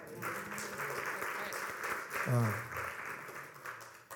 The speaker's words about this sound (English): Give the men a hand clap.